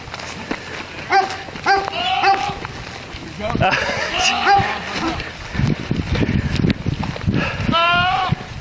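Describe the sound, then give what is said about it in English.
A goat in Oklahoma, recorded on a police body camera, lets out several loud, wavering cries that sound eerily like an adult man yelling for help, repeated at irregular intervals over a noisy, rustling outdoor background. “And yeah, the police body cam video of this, the goat sounds uncannily like a adult male yelling for help.”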